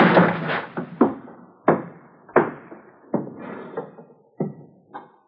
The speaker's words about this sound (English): I never thought I'd have to kick down a door to get you.